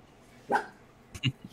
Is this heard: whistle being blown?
no